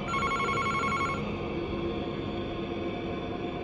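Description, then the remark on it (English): A telephone bell trills loudly for about a second, a rapid metallic ringing burst, then stops and leaves a steady background hiss with no voices. “The phone rang and rang, but I refused to answer.”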